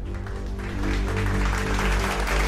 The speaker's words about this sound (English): Yeah. You get a little applause for that. You get canned laughter and everything.